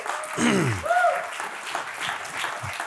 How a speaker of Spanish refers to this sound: Dele un aplauso a Él.